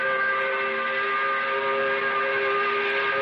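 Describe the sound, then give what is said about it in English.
A five o'clock whistle blows one long, unbroken blast, a steady chord of bright, harmonic tones that holds at an even, loud level for the whole clip with no voices over it. “The 5 o'clock whistle appropriately brought to you by Katie's in Mid-City”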